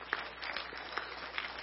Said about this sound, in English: Everybody give Jesus the biggest hand clap you give him all day long.